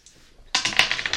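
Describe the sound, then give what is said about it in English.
After a brief hush, dice clatter across a hard table, a quick burst of sharp, rattling clicks, fairly loud, with no one speaking. “Let's roll and look to see if you actually have the keys for this.”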